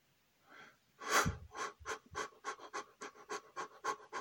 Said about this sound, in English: Breathing out just at that pace, quickly in and quickly out. And breathe out, breathe in,